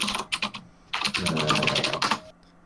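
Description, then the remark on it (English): Quick typing on a computer keyboard in uneven bursts of clicky keystrokes, with a brief pause before a longer flurry of taps, then silence. “Typing sounded a lot like the letters for blue Swedish ducks, so.”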